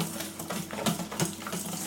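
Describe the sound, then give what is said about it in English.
A rapid, steady swishing and light splashing of liquid as someone whisks a molding mixture in a cup for about 60 seconds, with no talking. “Get my exercise here, doing my whisking.”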